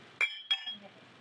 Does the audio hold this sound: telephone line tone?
no